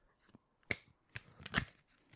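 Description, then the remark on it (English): Playing cards being shuffled, heard as a few quick, papery bursts and flicks with brief gaps between them, fairly soft and with no talking. “You realize that the true nature of shuffling cards is that they sound like a fart.”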